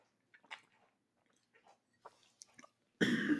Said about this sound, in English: I'm gonna get a drink of water here.